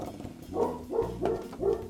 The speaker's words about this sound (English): Your dog barks, and that is like that.